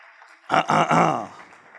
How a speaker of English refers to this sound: please give them a rousing round of applause.